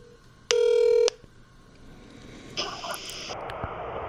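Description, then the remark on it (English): A telephone is dialed to call a woman and rings: first a loud, steady electronic tone lasting about half a second, then after a short pause a brighter, buzzier ring burst, softer than the tone, with no talking. “Let me just call her.”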